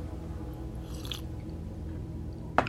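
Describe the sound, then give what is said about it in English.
A quiet sip of coffee, a brief soft slurp, followed moments later by a single sharp knock like a mug being set down. No one speaks. “Okay, so why don't you grab a sip of your coffee? I'll grab a sip of mine really quick.”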